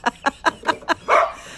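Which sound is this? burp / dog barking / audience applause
dog barking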